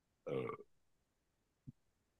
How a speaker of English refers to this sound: One was definitely caught on sound. Oh, so the crack of the soda did not make it, but like the burp I did off mic.